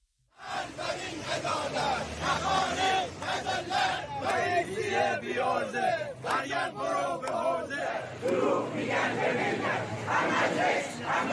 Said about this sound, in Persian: مدت هاست که فریاد اعتراض بازنشستگان از نقاط مختلف کشور به گوش میرسه. بازنشستگانی که حالا کف خیابون رو چاره ساز مشکلاتشون میدونن.